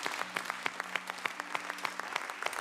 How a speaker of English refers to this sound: Come on, let's give the Lord a hand clap of praise today.